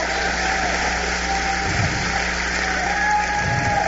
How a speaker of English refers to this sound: Come on, stand to your feet and clap your hands for Jesus Christ of Nazareth. Jesus!